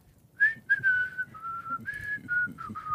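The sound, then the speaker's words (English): A person whistles a short tune, a string of clear sustained notes gliding up and down in pitch, with no talking and only faint background noise. “Yeah, He's a gorilla whistling.”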